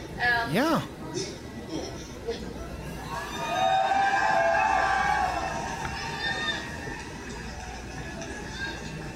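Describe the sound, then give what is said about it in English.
A crowd cheers, a dense wash of many voices that swells into a loud, sustained roar midway through and then eases back to a steady murmur. “And they cheer.”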